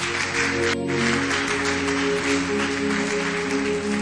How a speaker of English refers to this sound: That's why you should clap for yourself. You are in a church where you are being taught insight.